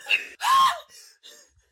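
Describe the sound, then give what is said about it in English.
A voice imitates the panicked screaming of a film character freaking out and crying in an interrogation room: a sharp short yelp, then a louder strained shriek, followed by two fainter breathy cries trailing off, alone. “He's like, it didn't work, and he just started freaking out and crying. He's just screaming.”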